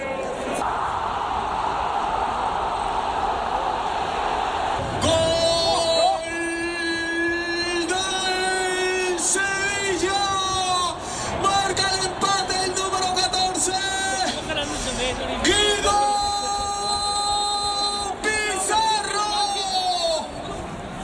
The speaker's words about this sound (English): So that was the sound of Sevilla's third goal going in and the crowd reaction.